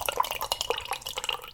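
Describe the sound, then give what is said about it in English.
Warm coffee pours into a cup for a second or two on an autumn morning, a steady stream of bubbly, splashy trickling with bright little drips and gurgles, heard alone without any talking. “I'm going to pour myself some warm coffee on this autumn morning and open up today's file.”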